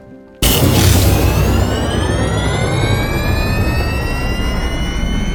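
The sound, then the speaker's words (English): An aircraft engine kicks on abruptly and loudly before takeoff, its steady roar joined by a rising, whining turbine pitch as it spools up, with no voices. “Okay, engine's hot. Ready for takeoff.”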